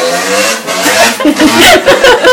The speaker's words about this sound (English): There's like a ridiculous motorcycle outside.